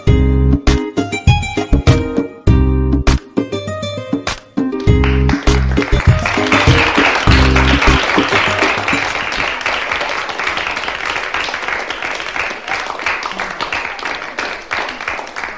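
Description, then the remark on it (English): A loud musical sting with strong low tones and sharp beats opens the Brooklyn Cafe show, then gives way to a sustained wash of audience applause, dense crackling clapping that holds steady to the end. “Applause I've ever heard.”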